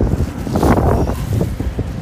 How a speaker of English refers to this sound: Lord Jesus, oh my gosh, it's so windy, and the leaves are blowing everywhere by my face.